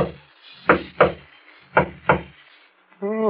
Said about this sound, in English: There's a discreet knock on the door at the front of the shop.